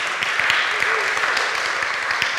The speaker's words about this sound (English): Thank you for starting that round of applause